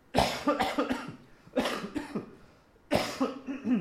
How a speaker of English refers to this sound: I'm just going to cough here now.